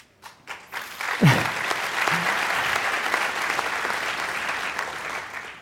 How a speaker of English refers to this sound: Yeah, they deserve the applause.